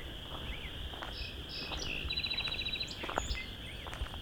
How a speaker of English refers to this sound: That was a song sparrow. The west end of Vine Mount Marsh.